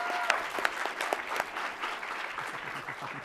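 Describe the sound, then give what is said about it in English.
A crowd at Emerald City Comic Con in Seattle, Washington claps steadily, a dense wash of many hands with a few sharp individual claps standing out early, holding fairly constant loudness for a few seconds with no voices. “Can we have a round of applause for Kyle for making us sound better than we are?”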